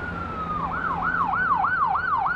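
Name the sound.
ambulance siren driving by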